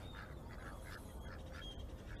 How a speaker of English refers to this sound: Those are regular ducks, green-headed. They're chilling. Look at them. They're smiling, man. They're having a good swim. Look at his little tail flapping.